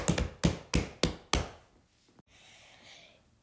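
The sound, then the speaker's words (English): A short drum roll made of five loud, evenly spaced thumping hits, each ringing off quickly, followed by a single faint click and a soft breathy hiss. No one speaks. “Drum roll, please.”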